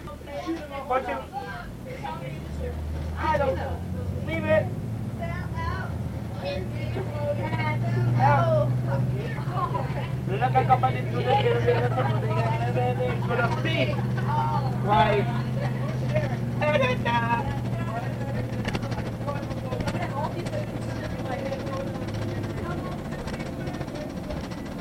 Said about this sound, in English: Bus ride isn't done yet. We're only in Kingston now, so hold on a sec.